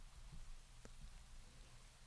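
Soft, steady rain patters in a continuous hiss, faint and even, with a brief brighter drip standing out once amid the wash of falling water.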